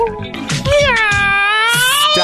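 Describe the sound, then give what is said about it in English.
A person's voice imitates a cat, drawing out a long, wavering meow that rises and falls and actually says the word meow, loud, with a few short vocal sounds at the start and end. “Not only did you meow, you actually said the words meow like a cat.”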